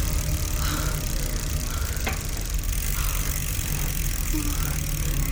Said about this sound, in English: Where are we? It's all like farmland. There! He's pulling into that driveway. He's gonna have the car.